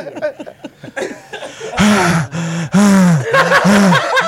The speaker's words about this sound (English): Okay, heavy breathing not included. Jackass. The heavy breathing's unintentional. The rest of it is on purpose.